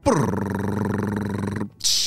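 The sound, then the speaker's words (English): A voice imitates a drum roll with a loud, steady rolling trill that lasts about a second and a half, followed by a short hissing crash-like burst. “Drum roll, please.”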